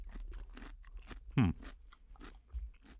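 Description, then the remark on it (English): A loud crunchy bite into a pickled gherkin during a pickle tasting, followed by quieter wet chewing and soft mouth sounds, with no talking. “But it has more crunch than you would think.”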